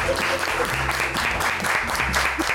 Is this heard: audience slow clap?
yes